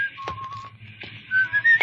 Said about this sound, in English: And the him? Well, you can see him right now walking down the street over there. Yes, and believe me, if he knew what was about to happen, he wouldn't be whistling.